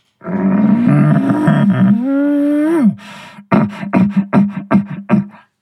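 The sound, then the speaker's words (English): A human voice through a bugle tube, with no reed, imitates an elk bugle: a loud, low, growly moan swells into a rising whine, then breaks into about eight rapid grunting chuckles. “So with no reed in my mouth, this is just bugle tube and voice. This is kind of how the call sounds without the reed in there.”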